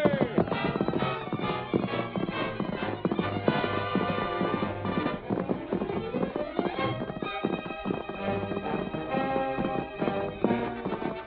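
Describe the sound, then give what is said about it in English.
Two horses ridden by two men gallop at full speed across country, their hooves pounding in a rapid, steady rhythm that lasts throughout, loud, layered with dramatic music. “Masked man and his faithful Indian companion urged their horses to their greatest speed.”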